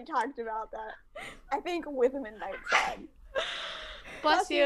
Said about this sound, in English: Bless you.